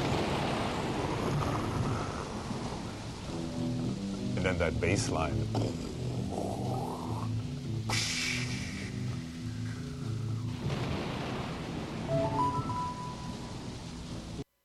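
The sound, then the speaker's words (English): Steady hiss of rain sound effects with low rumbles of thunder plays under a bouncing bass line, while a man talks briefly over it. “He said, we got to put in some rain and thunder. So sure enough, I mean, the whole thing starts with.”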